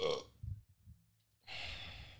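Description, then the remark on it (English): A low burp rumbles out, followed by a short pause and then a breathy, airy exhale. There is no talking. “Here comes that burp.”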